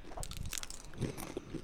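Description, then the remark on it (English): Crunchy bites into a chip, with sharp crackling snaps followed by a rapid series of chewing crunches, fairly loud and steady for under two seconds with no talking. “Do not rub eyes after chip is eaten.”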